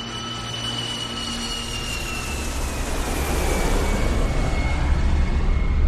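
Engines of a British Airways passenger jet carrying 385 people, landing in Kuwait on 1 August 1990, roar steadily, a high turbine whine sliding slowly downward over a broad rushing drone that swells louder toward the end. No voices are heard.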